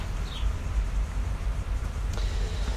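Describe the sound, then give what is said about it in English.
A short train of about 10 cars rolls past, a steady low rumble with a continuous wash of noise, plus a brief high squeal and a faint clank near the end. No one speaks. “I guess that's the perk in Jesus' day, they didn't have trains passing by. Oh, it's a short one, too. It was like 10 cars long.”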